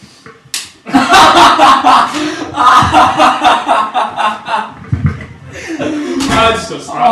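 A single sharp slap against skin cracks out near the start, loud and close, then a burst of laughter and excited chatter from several people fills the rest.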